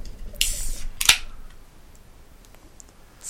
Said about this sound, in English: Love that sweet sound of the crackling of the beer. It's so nice. Nothing like a nice ASMR beer review.